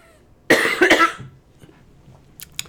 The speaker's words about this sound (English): I'm going to cough now, guys, so that way I'm not continuously wheezing throughout the rest of this episode. So bear with me.